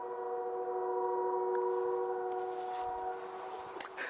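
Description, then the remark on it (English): A distant train sounds a long, steady horn that holds for about three seconds, then fades out, with faint rumbling beneath and no talking. “Quite a ways away by now. Why is it so loud? Is it a bat? I love bats. Is anybody here? Besides the train.”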